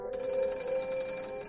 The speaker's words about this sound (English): A phone rings on the desk before me. Perhaps it was always here, but I jump, startled by the sound nonetheless.